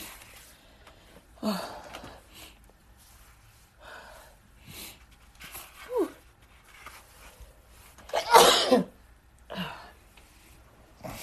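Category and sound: human body sound, sneezing and coughing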